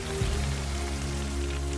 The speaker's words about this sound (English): Flynn sprayed big jets of water at the fire. Take that, fire! And that!